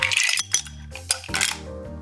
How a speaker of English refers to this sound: For two slow gin fizzes, plunk enough ice cubes into a cocktail shaker to fill it.